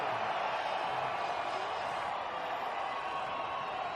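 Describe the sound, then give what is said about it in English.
A large crowd of BYU fans in the stands in Boise roars and cheers for Tanner Mangum in a steady, loud ovation, a dense wash of many voices and applause that holds evenly for the full four seconds, with no single voice standing out. “And Tanner Mangum, here's the ovation from the BYU fans in the stands here in Boise.”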